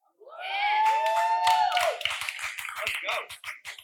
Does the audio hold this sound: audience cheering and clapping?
yes